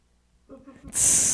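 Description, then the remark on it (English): A brief low murmur gives way to a loud, steady sizzling hiss that bursts in abruptly and holds bright and constant until the end. “That's the sizzling sound.”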